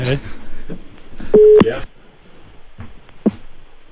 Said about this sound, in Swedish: Så nu, då ringer vi tillbaka